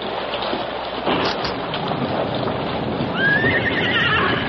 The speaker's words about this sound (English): And the worst of it is, it's starting to rain.